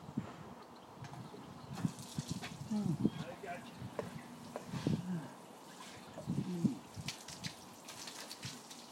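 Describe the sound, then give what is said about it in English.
Water is switched on after a couple of seconds to give a cold shower, wetting the legs first, and keeps running in a steady, soft hiss, with a few brief voice-like sounds rising over it. “Let's just turn on the water.”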